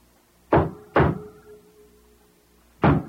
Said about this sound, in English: I got a pretty good beat. Not bad. And I wait. Then all of a sudden, I hear this thing cut. Now it is silence. They have heard the knocking at the door.